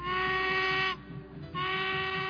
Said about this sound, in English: And in a flash, The train was on its way, winding around the tracks with the occasional whistle blow.